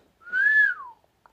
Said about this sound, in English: His eyes lit up, and he let out a slow whistle.